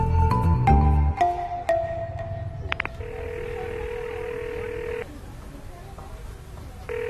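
Quick bursts of telephone keypad tones as a woman dials a town clerk at a city council office, followed by a steady electronic ringing tone that pauses and starts again, heard clearly.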